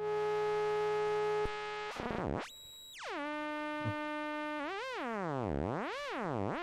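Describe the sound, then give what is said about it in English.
A synthesizer's oscillator B, playing on its own on a square-wave setting, hums a steady, buzzy tone, then slides down and up in swooping pitch bends and a wobbling warble, loud with no one talking. “That doesn't sound like a square.”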